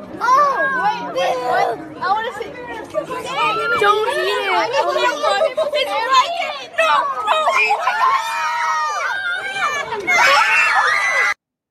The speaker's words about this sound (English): stop screaming.